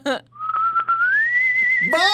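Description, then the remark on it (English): A person whistles a single long goodbye note that rises slowly in pitch and holds steady, clear, with brief bits of voice just before and after. “Can you whistle goodbye to Josh, like a little goodbye?”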